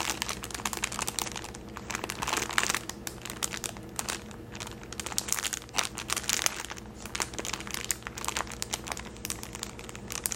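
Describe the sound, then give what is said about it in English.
Steady crinkling of thin plastic packaging around decorative paper napkins printed with pumpkins and a cat, a dense stream of crisp, bright crackles and rustles that keeps going for the whole stretch with no voices. “Also has lovely crinkles.”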